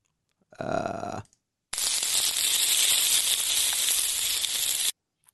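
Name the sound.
meat sizzling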